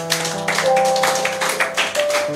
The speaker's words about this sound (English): Give the Lord a clap of hand.